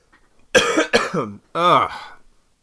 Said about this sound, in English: Pardon me and the coughing into the mic.